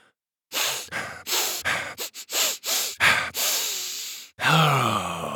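Hard, forceful sniffing repeats about eight times in quick, uneven succession, close and loud, followed by a longer breathy, voiced exhale at the end.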